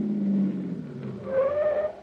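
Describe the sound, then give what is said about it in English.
A taxi's engine idles low and steady, then a rising brake squeal cuts in as the cab pulls up and comes to a stop outside a little white cottage, behind another car. “Driver, pull up that little white cottage there behind that car that just rolled away.”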